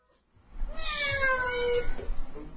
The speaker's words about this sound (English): Meow.